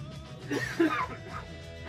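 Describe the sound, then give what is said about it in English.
A person coughs and clears their throat, two or three rough bursts in under a second, followed by quiet room tone with no talking. “when I'm coughing, you could talk instead of just silence when I'm dying.”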